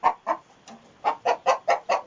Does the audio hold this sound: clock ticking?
no